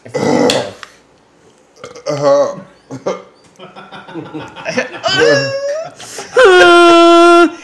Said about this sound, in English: Uh-oh, he's going to vomit! Please vomit on one of the dogs.